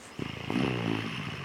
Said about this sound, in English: Yeah, this is like... Snoring Child. Okay, now we're talking.